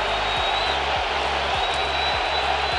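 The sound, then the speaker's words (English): A large stadium crowd in Seattle jeers and roars at pitcher James Karinchak after a pitch clock violation in the bottom of the 8th inning, a steady, dense wash of noise holding at the same loudness throughout, with no individual voices standing out. “He gets called for a pitch clock violation, and the fans in Seattle let him hear it.”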